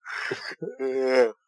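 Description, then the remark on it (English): A person mimics a big yawn: a breathy intake, a brief pause, then a long, drawn-out voiced exhale that rises in pitch before trailing off, fairly loud. “The Eat, Sleep, Conquer, Repeat did the biggest yawn ever.”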